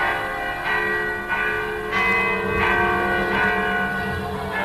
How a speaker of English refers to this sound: On each face of the tower, there's a large clock face. In time with these, Shandon's bells rang our lives away, quarter by quarter, all through the day and night.